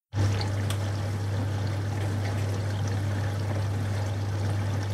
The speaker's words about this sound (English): That actually does sound like a dishwasher. Yeah, it kind of does. That is a dishwasher.